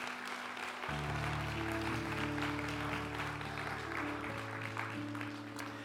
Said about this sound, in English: Clap your hands and rejoice this morning.